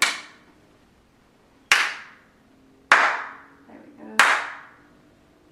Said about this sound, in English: Immediately you can feel, I don't know if you can hear it on the sound, but the sound is getting really crisp and clear. Even the little claps are nice and crisp and echoing around the walls.